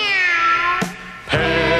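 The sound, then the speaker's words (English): A cat meows loudly in a drawn-out, wavering cry that breaks into two or three connected calls, with no other sounds around it. “But since Jesus knocked his teeth out, all he can say is meow.”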